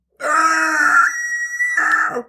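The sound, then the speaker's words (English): A single monstrous, throaty scream erupts from deep in a woman's throat, loud and sustained for about two seconds, its harsh tone thinning briefly in the middle before swelling again and cutting off. “A monstrous scream erupted from deep in Annalise's throat.”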